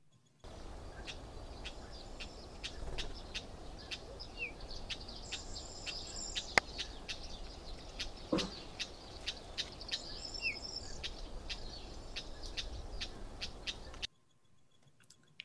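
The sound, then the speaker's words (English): A Cyprus wheatear, a small perching passerine bird about 15 centimetres long, calling: a steady series of sharp, dry clicking notes, about two per second, with a few higher buzzy phrases, over a constant hiss of outdoor background noise. “I'm also going to say that the bird is Cyprus Wheat Ear.”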